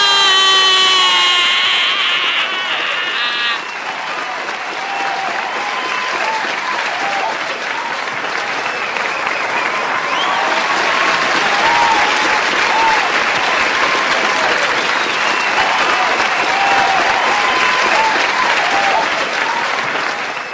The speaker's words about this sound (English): Oh, doctor, help me. I got applause disease. Oh, are you applauding that also?